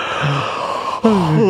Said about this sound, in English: Snoring, or yawning, should I say, is contagious. Oh, if I yawn now, you can... Here we go.